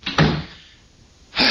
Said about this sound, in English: Want me to close the door? Yeah, that's a good idea.